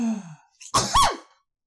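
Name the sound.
sneeze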